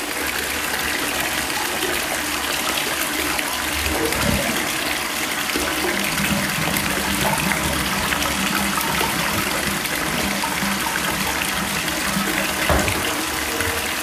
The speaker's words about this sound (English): I don't know if you heard that, but I drained more water. Now I'm like moving around the water. Okay. I'm sorry, that was like really loud